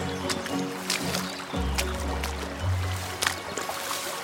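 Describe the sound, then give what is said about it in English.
Water trickles and splashes steadily, growing louder, a continuous bubbling wash with small irregular spatters, backed by a low outdoor rumble that swells briefly midway. “Yeah, it's definitely getting louder, isn't it? That water So that's some of the work they've been doing.”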